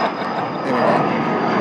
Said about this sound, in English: It's going to be a bit noisy now, so here we are. There's a Challenger just taking off there, so that's nice in the distance.